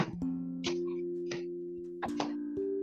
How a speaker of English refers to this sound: Cause you did a weird like noise. I'm sorry, I was it was a notification.